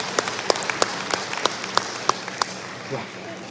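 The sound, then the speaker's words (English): An audience applauds the 2019 Audio Description Award winners with dense, steady clapping, several sharper individual claps standing out above the wash, holding at a moderate level for a few seconds before easing slightly at the end. “And let's have another round of applause for the 2019 Audio Description Award winners.”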